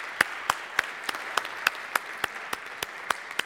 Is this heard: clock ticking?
no